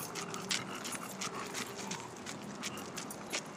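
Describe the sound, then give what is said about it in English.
A small dog trots along a hard floor, its nails tapping in a quick, steady rhythm while it snorts and snuffles between steps, fairly quiet with no voices. “The sound of the walking. It's great. Yeah. Oh, it sounds like a pig.”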